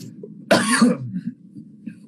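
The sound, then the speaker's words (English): A single loud cough bursts out sharply and fades within about half a second, followed by a low murmur of background noise. “Sorry for that loud cough.”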